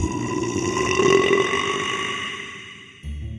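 A tremendous, loud belch from the character Comrade Buttonface, caused by baking soda and buttermilk inside him creating CO2, rumbles on for about three seconds, swelling early and slowly fading before cutting off abruptly, alone with no talking.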